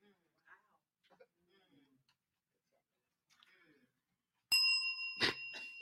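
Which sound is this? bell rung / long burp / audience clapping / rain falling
bell rung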